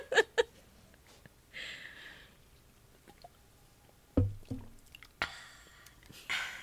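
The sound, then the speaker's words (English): Quiet sipping and swallowing from a drink, with a few wet slurps, soft clicks and a brief breathy hiss, spread unevenly over several seconds with no talking. “Let's try the sipping one again.”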